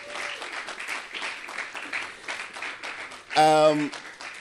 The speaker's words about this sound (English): Oh, clap well now.